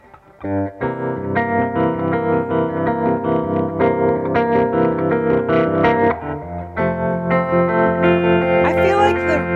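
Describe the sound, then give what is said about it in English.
Electric guitar chords ring out through a Flint reverb pedal set to a gentle reverb, with a soft reverb tail, sustained and fairly loud, strummed in a steady pattern with a brief pause before a final bright strum and some faint string noise. “The way I have the reverb dialed in on the Flint is like, it's just a little gentler of an approach”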